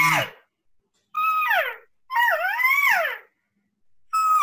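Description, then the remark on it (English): Four whiny, nasal cow calls made while hunting in the morning, each a loud mew that rises and bends down in pitch, separated by short silent pauses, with no talking over them. “Just basic cow calls.”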